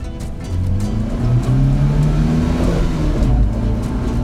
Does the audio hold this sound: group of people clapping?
no